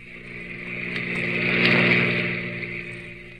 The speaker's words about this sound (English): Maxton's car whipped by.